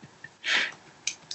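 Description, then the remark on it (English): A single sharp, hissy nose blow lasting about a quarter second, followed by a couple of brief faint snuffling clicks. No one speaks. “She just keeps blowing her nose.”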